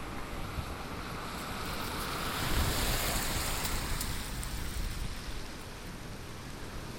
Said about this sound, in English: Give yourself a point if you said that car was coming from in front and it passed me on my left. So if you're listening in headphones, you should be able to hear where these cars are coming from.